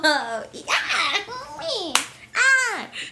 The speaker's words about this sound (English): That sounded like a slap. It wasn't a slap. If you heard, I just put my hand on your leg. I did not slap you.